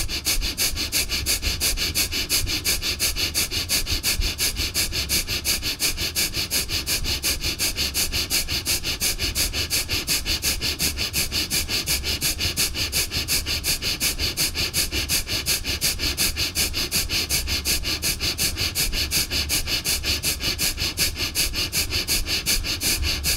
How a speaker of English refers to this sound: And let's do some fast breathing with the intention of releasing any of the negativity that we have with any other person. Fast breathing in and out through the nose. Let's do it.